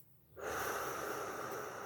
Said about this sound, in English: So you breathe in for 4, and I'll do it with you right now. Hold for 4. And exhale for 4.